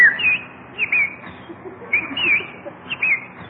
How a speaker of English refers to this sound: Oh, Jack, look at that beautiful bird on your lawn. Ah, look, he's hopping over to us. Come on, Birdie. Come here.